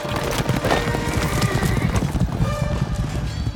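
Knights' warhorses charge at full gallop toward each other across a battlefield, riders with lowered spears, a dense, rapid drumming of heavy hooves that stays loud and steady throughout, with a brief high whinny rising above the rumble.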